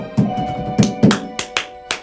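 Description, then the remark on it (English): Hand clapping in a steady rhythm, about five or six sharp, bright claps evenly spaced over a low, humming tonal background. “She's very good at clapping. It's on the beat every single time.”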